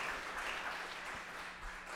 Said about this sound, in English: So I ask you, saints in the sanctuary, where is your voice? If you're in the sanctuary, just give God a hand clap of praise because he hears your voice.